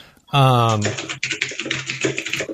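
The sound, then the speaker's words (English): Rapid, continuous, furious typing on a computer keyboard clatters in a dense run of quick keystrokes, while a voice sounds loudly over the start of it. “Who's typing? Jason is typing so furiously, I just had to mute him.”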